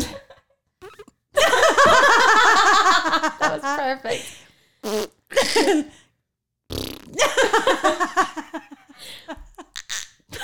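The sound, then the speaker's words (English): Someone blows loud, buzzy raspberry sounds with their mouth, imitating farts in several sputtering bursts, one long and drawn out. Laughter and brief talk break in between. “Make three fart sounds.”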